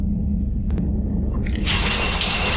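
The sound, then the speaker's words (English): A low rumble and two quick clicks, then hot shower water surges on partway through and settles into a loud, steady hissing spray. “I figured you'd be more interested in a shower.”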